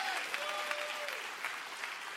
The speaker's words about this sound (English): Somebody clap your hands and say amen to that. Amen to that.